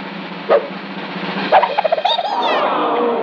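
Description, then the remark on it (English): A dog lets out an excited howl: a few sharp yips and quick rhythmic whines build into a rising, wavering howl that carries on at moderate loudness, with no talking. “And listen to her howl in excitement.”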